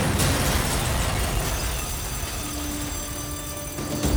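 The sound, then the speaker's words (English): A blocked pipe explodes at 1:20 p.m. while workers are clearing it: a sharp burst at the start gives way to a loud, steady roar of hissing, rushing noise that holds for several seconds, with another jolt right at the end. “They were working to clear the pipe at 1:20 p.m. when it exploded.”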